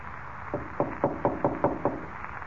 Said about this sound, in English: No, of course he's not there. Just another trick. He knocked at the door and then skipped off down the corridor.